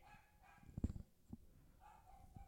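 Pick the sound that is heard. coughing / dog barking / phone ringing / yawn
dog barking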